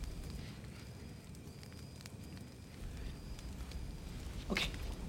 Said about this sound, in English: Like, walking in, it's like that crackling fire, and they're just so dramatic.